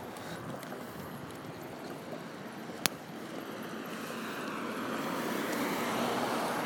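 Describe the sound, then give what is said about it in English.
A car's steady rushing road noise grows gradually louder as it approaches along a quiet neighborhood street and turns in, with a single sharp click partway through and no voices. “One more turn up here where that car just turned in.”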